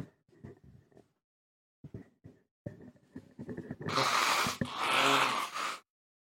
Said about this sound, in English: Sorry, can I blow my nose?